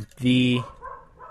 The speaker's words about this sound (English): That's so distracting. Yeah. I should be used to it because my dog barks all the time.